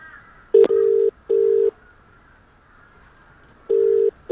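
A phone line rings out with a steady low double-ring tone, two short bursts, a long pause, then another pair starting, preceded by a brief click. No voices.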